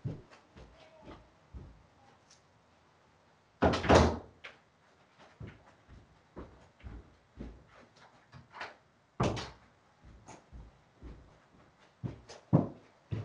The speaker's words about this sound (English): Oh, let me just close my door for a second.